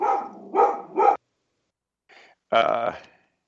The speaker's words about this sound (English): Oh, I hear a dog. Yeah.